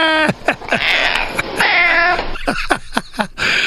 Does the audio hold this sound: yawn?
no